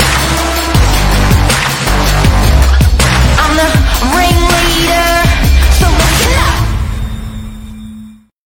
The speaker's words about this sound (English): Do you like my explosion in the background? That is an explosion.